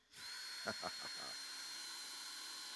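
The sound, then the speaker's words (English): A power drill with a not very sharp drill bit spins up abruptly and whines steadily while boring into pieces of wood, with a few brief rougher bursts early on before settling into a continuous grinding hum. “Now I can put a drill bit in here, and I'm going to use this power to drill into these pieces of wood.”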